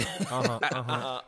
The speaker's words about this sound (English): I had to clear that throat. Let me clear my throat.